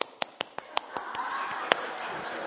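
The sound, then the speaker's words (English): Light, dainty hand clapping, demonstrating how ladies should clap: a quick, evenly spaced run of about six small, crisp claps, then a few softer, scattered ones fading into a low background murmur. “So, ladies, you want to get a man, you need to clap like this.”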